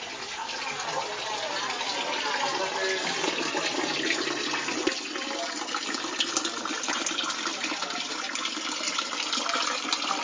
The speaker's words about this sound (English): And what I love about this patio is entering it, you hear the water coming down from that big fountain right in the middle.